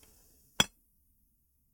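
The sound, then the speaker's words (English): A single bright, sharp clink of glasses touching in a toast, ringing briefly before fading into near silence. “Let's just raise our glass to being alive so we are able to be feeling entitled.”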